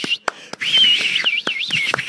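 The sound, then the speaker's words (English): Someone attempts a whistle, producing a thin, airy, wavering tone that dips and rises unsteadily for about two seconds, punctuated by several sharp, percussive taps or claps. “That's him trying to whistle you.”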